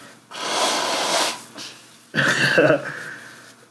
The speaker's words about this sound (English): I came down with a little head cold the past yesterday is when I felt it. Well, or 2 days ago, scratchy throat, and I was blowing my nose more and more. And today, yeah, I've been blowing my nose.